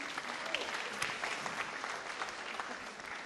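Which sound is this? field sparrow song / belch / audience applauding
audience applauding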